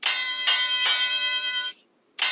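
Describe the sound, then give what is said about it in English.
A wrestling ring bell clangs three times in quick succession, its bright tone ringing on between strikes, then goes quiet before one more loud hit. No one speaks. “Oh, there we get the bell ready.”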